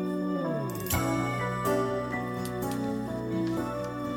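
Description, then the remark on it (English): A mellow soft rock tune plays at steady volume, with warm Fender Rhodes electric piano chords and shimmering chime glissandos sparkling across the top, no singing yet. “It's got your Fender Rhodes and your shimmering chimes.”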